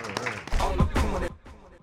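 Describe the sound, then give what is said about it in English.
A short burst of audience applause for the guests, mixed with cheering voices, loud and dense for about a second before cutting off to quieter murmuring. “Give all our guests a round of applause.”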